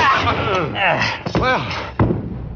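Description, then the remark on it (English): A scuffle of strained grunts and a short cry, followed by a single heavy wooden thud as someone is struck over the head with a chair, loud. “You were very handy with that chair. How come you hit him?”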